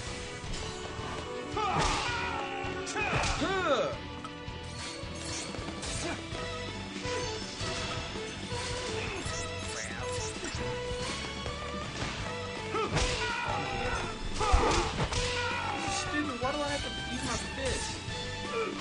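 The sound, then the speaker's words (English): Video game punching impacts, a character punching enemies armed with machine guns, land in rapid succession, heavy thuds and cracking smashes mixed with quick whooshes over a dense, busy soundtrack with voices in the background. “So they got some machine guns and he's punching them.”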